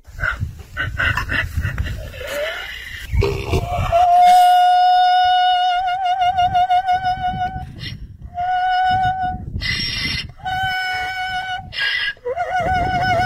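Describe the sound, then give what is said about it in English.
A donkey brays loudly in long, high, wavering tones, repeated in several drawn-out bursts with short breaks between them, after a few rough, noisy snorts at the start. “All right, well, then let's go back to Opera Donkey then.”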